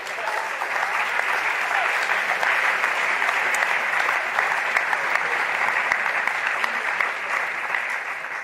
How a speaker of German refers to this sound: Genau, der Applaus, der gilt nämlich Gott, weil sowas kann man nicht machen, das ist einfach wirklich einfach Gottes Eingreifen gewesen in der Situation.